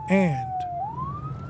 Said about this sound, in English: I hear the sirens. I got to get out of here.